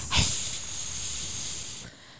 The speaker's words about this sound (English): So, also while in the barn, Zach gets an EVP of a hiss.